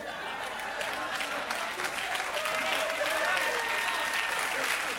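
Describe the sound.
Sustained applause from a crowd, a dense, steady wash of many hands clapping at once with a faint murmur of voices mixed in, holding at an even level throughout.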